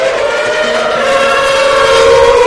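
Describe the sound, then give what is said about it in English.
A Formula One car's engine screams loudly, a high-pitched harmonic whine holding steady and swelling slightly toward the end, with no voices, recorded from the start-finish straight during qualifying as Maldonado's car goes past. “And I'll give you some proper hi-fi recording of F1 cars.”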